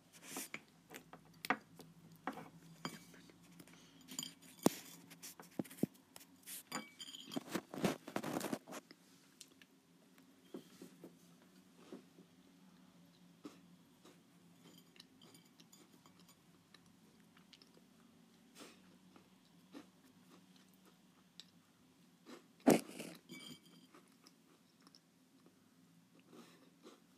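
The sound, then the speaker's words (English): Crisp snapping of a digestive biscuit followed by steady crunchy chewing, with a burst of louder crunching early on and a sharp crack near the end; no talking. “Okay, so now she's gonna do the biscuit breaking and chewing.”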